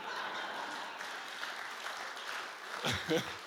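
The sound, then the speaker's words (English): An audience claps steadily throughout, a dense wash of many hands, with a couple of louder bursts toward the end. “You can clap.”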